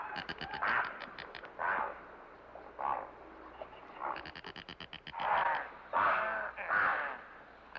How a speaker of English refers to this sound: Yes, that was that cat, all right.